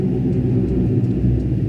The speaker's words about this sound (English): We got World War II flying. Yeah, that is an old plane.